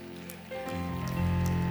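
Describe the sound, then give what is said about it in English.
Faint, scattered audience clapping, a soft crackling patter that swells a little after the start and then holds steady without anyone speaking. “Oh, clap better than that.”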